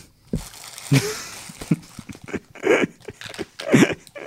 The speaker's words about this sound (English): why don't you just crumple up as much paper on microphone as you can?